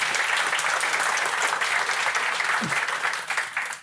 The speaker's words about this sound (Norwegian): Men gi en applaus da, folkens.